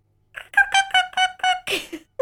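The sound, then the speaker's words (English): A person imitates a cricket with about six quick, evenly spaced, high-pitched voiced chirps in a steady rhythm, ending with a breathier, rougher burst. “My phone died, but here's my cricket impersonation.”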